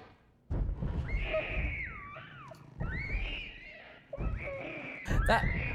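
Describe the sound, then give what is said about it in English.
A baby in a horror video game screams in three shrill, wavering wails separated by brief pauses, loud, with a low rumbling background underneath and a couple of sharp clicks near the end. “That baby screaming is really disturbing.”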